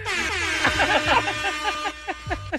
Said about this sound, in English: You guys. A lot of horns. Remember the Vuvuzela times?